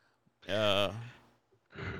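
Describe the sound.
A single drawn-out yawn, fairly loud, its voiced tone wavering then fading, followed after a short pause by a breathy exhale.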